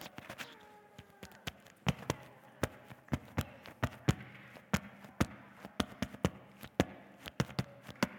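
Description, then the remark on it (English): Morse code tapped out as a rapid string of sharp, loud knocks in uneven short and long groupings, with no talking, continuing steadily for several seconds. “Morse code.”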